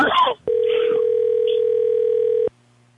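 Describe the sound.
A brief burst of talk, then a telephone ringback tone as a call is placed to call someone back: one steady, mid-pitched buzzing tone holding for about two seconds before cutting off abruptly, with a little speech over its start.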